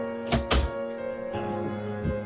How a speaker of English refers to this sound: Yeah, I was busy shutting my door.